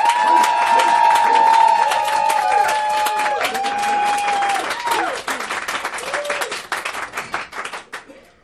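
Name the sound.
audience applause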